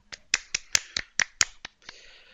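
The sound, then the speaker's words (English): About nine sharp hand claps in quick, slightly uneven succession, fairly quiet, like one or two people giving brief applause, with no voices. The clapping follows a Best Actress in a Drama nominee's name being read out correctly. “Round of Oh, applause for just clap.”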